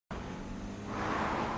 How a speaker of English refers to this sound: It's my car. It's a Prius. I feel like we're literally driving around in a vagina.